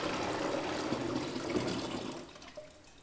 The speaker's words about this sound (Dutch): Ja, want op een gegeven moment, we gaan nu ik de gist aan het oplossen ben, gaan we het mengsel eigenlijk in de brouwemmer doen. Het mengsel erin. Voor jou is nu de instructie, giet het brouwsel in je brouwemmer.